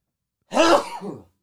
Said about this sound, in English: Oh, pardon me, everyone, for the loud sneeze.